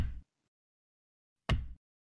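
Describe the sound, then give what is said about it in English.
Two heavy, booming impacts land about a second and a half apart, each a deep thud with a short rattling tail, as a door is pounded hard to force it open, with a third starting at the end. “The door is still holding. Give it another go.”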